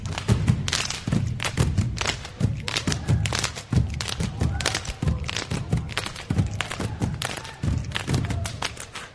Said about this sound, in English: Black Grace is performing a piece based on the traditional ideas of Samoan slap dancing. Dancers make sky-high jumps and quick turns to create complex rhythms of floor stomping, cries, and body slaps.